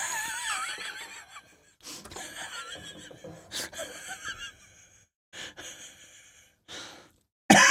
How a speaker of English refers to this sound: Oh my goodness. Old man cough.